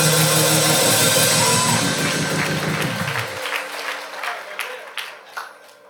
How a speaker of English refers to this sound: Now clap your hands and give God a shout of glory.